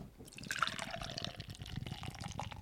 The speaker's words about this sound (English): Now, that was a good-ass pour. That was an excellent pour.